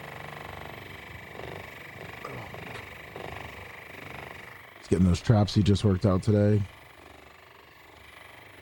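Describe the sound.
A massage gun vibrates on a man's left side as he lies on a table, its steady, buzzing motor drone at constant pitch running through the whole recording. A man's voice speaks loudly over it for a couple of seconds near the end.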